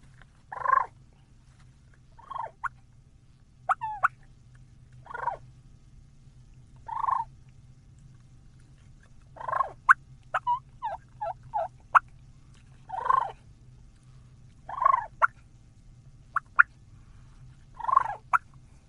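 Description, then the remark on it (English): Soft, rolling turkey purrs made with the tip of the tongue on a mouth call, repeated in short bursts about every two seconds with a few sharp clucking clicks between, over a low steady hum. “And I'm going to start with the purr, and I do the purr with the end of my tongue.”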